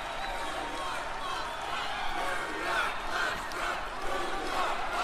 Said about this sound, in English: And all the cheering.